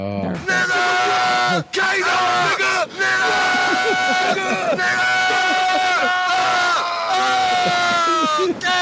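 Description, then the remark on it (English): A crowd of people screaming and yelling loudly and continuously, overlapping voices at full volume for several seconds, with only brief dips between shouts. “It's good that people still find the time to scream that.”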